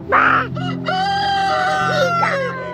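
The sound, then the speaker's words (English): A rooster crows loudly, a long wavering call with strong harmonics, while hens cluck against a steady low hum in the background, outdoors beside a house. “I am out here with the chickens to escape the chaos inside my house.”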